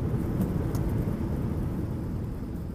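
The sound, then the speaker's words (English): A steady, heavy roar of an airplane landing, dominated by deep low rumble that stays loud and constant throughout, with faint hissy bursts on top and no voices. “So the first is an airplane landing.”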